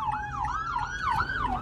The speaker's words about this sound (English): Sorry, an ambulance just went by.